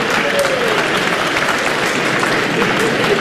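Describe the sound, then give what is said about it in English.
A large stadium crowd at a match roars with cheering and laughter at a whoopee cushion prank, a dense, loud and continuous wash of many voices that holds steady throughout without a break. “Not funny for the players. But the crowd find it quite amusing.”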